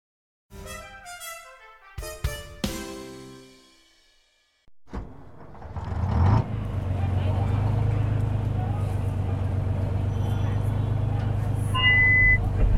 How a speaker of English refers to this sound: Welcome, ladies and gentlemen, to the Bay Bouncer, Halifax's amphibious tourist bus. We go from Halifax across the harbor to Dartmouth on this massive amphibitron.